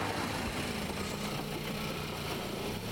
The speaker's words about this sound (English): I'm only waiting to cross this road because it's habitual. Normally I have to wait a couple of minutes to cross. It's a very slow car.